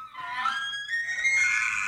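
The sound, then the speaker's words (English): A drawn-out, high-pitched elk bugle with a whistling, screaming quality rings out steadily for about two seconds in Colorado in the morning, fairly loud, with no voices. “And the elks are screaming, baby.”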